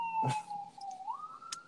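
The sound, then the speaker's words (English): An ambulance siren wails, its steady tone dipping slightly and then rising again, with a short knock early on and a brief crackle near the end. “Nah, it was an ambulance.”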